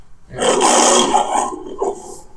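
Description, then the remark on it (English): A single loud, sustained lion roar with a rough, raspy growl, rising quickly and holding for about a second and a half before trailing off: the MGM (Metro-Goldwyn-Mayer) film studio logo intro. “It's MGM”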